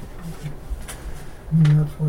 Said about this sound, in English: And that's why it was still printing.